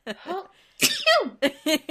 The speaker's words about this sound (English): Bless you. Thanks.